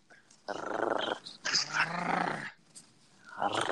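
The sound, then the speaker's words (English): A dog named Tex Ferguson growls in two sustained, rumbling bursts, moderately loud, with a brief pause between them and a softer growl starting again at the end. “Is that Tex Ferguson growling in the background?”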